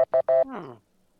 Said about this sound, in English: If I can guess without... Yeah, the buzzer sounded...